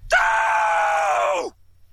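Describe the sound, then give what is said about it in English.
A single loud, high-pitched cartoon "doh" exclamation from Homer, used in place of a scream, stretched out and held steadily for about a second and a half before its pitch sags and it cuts off. “Only on this viewing did I hear that instead of a scream, it is doe. A high-pitched doe, yeah.”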